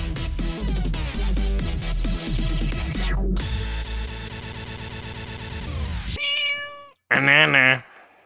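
Loud, busy music plays for several seconds, then cuts out, followed by a short tonal cry and a louder, drawn-out cat meow.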